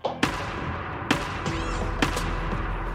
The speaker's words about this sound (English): But soon, they realized they weren't alone in the woods. We start hearing some banging on a tree across the way.